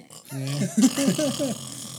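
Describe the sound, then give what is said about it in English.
A drawn-out, low, buzzing fart that wavers in pitch for over a second, fairly loud, with no talking over it. “You think we can fart the alphabets with our ass?”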